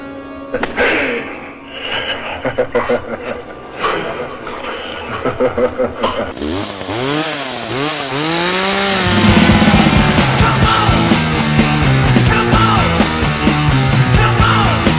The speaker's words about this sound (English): I love the sound of that chainsaw. So iconic.